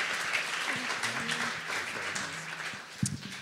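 A crowd applauds steadily, a dense wash of many hands clapping at an even loudness throughout, with a few faint voices and low murmurs mixed into the noise.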